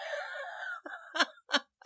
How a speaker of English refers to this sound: Oh, my God, that was such a smoker's cough, and I don't I know, smoke. Right? And you don't smoke? It's like, so I don't know what the hell's going on with you.